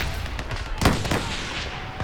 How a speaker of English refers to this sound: The warships are bombarding the Turks' batteries as I write this. Shell is bursting all around me, knocking the sound out of the barricade.